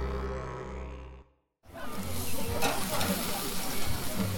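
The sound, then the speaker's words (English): A brief stretch of music cuts to a short silence, then beef steaks sizzle loudly on a barbecue grill outdoors in the evening at the Alice Springs Telegraph Station: a steady crackling hiss with sharp pops running through it. “There are beef steaks sizzling on the barbecue this evening.”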